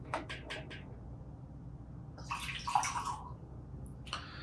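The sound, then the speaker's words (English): Blackened whiskey, a blend of straight whiskeys finished in black brandy casks, pours into a glass in a short gurgling burst, with a few quick clinks at the start, then a brief trickle at the end over a low background rumble. “I poured a little into our infinity bottle, so that keeps going.”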